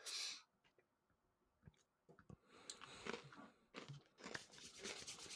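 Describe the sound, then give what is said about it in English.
Crisp crunching of a potato chip being chewed, with a sharp bite at the start followed by a run of irregular, brittle crackles and crunches, no talking. “can we get one more hard crunch, and then we all decide what kind of chip he might be eating?”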